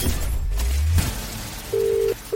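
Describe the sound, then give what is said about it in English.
A telephone call being placed live on a radio network: after a second of rushing noise, a steady electronic ringing tone sounds clearly, breaks off, then starts again, with no voices. “I'm going to make that call across the Hits Radio Network”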